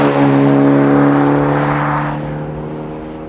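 A manual-transmission car's engine revs loudly with a strong droning growl, then eases off as the note drops and fades slightly, with crackling exhaust pops. No one speaks.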